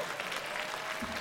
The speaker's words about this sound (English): Applause. Thank you.